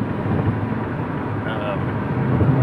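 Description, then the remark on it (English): A small white car drives past, its steady engine and road rumble swelling slightly toward the end amid some wind noise. “Little white car.”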